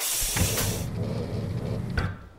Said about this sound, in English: Get that door open.